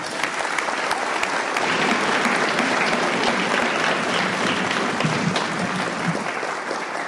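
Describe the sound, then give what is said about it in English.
A steady round of applause from an audience for the speaker fills the whole clip, dense rapid clapping holding at a fairly loud, even level for about seven seconds before easing slightly at the end. “One more time, a round of applause for our speaker.”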